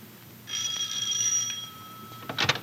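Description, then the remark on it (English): A doorbell at the Gibbs home rings once in the morning with a bright, sustained metallic tone that hangs for about two seconds and slowly fades, followed by a brief burst of noise. No one speaks. “It is the next morning now, and at the Gibbs home, the doorbell rings.”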